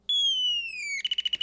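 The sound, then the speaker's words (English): An antique Christmas ornament's electronic bird call: a high whistle that slowly slides downward, then a quick run of seven or so short, warbling chirps, loud and clear with no voices. “This is an antique Christmas ornament from Colin's childhood.”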